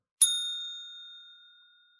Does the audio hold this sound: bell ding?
yes